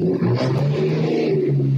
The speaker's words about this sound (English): That is a very loud engine outside my house.